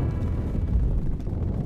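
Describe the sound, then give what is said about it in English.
A continuous, heavy low rumble of a creeping artillery barrage at 4:20 a.m. on August 8th, signalling the start of a battle, the booms of gunfire and explosions blurring into one dense, roaring wall of sound with no voices. “At 4:20 a.m., August 8th, the barrage signaled the beginning of the battle.”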